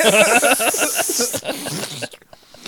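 A loud, steady spray hiss runs for about two seconds, rough and breathy with some fluttering texture, then cuts off, leaving only faint scattered noise.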